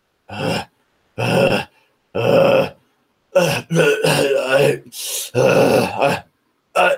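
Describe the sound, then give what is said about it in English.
A person imitates grunting and panting: three short, forceful grunts spaced evenly apart, then a longer run of strained, breathy vocal bursts and one final quick grunt. “You know, you're like grunting and panting.”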